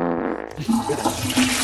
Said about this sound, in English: As a farewell, would you like a flush sound effect? I'd love a flush, mate. Yeah.